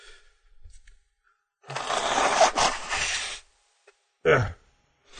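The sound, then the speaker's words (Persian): Faint rustling as a paper tissue is grabbed, then a loud, breathy nose blow lasting over a second, followed after a pause by one short, sharp snort, with no talking. “ببخشی بذارم این دستمال کاغذی از این بر بیارم.”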